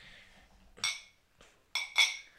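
Glasses clink together in a toast, a few bright ringing taps, the last two in quick succession, with a faint hiss between them.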